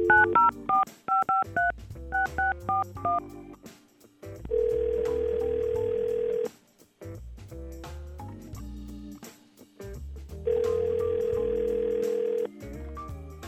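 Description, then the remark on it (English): A rapid run of touch-tone keypad beeps dials a phone number to call a woman, then a steady ringback tone purrs twice with a pause between rings, clear and fairly loud with no voices. “So hopefully we can get her on the phone. Let's call her.”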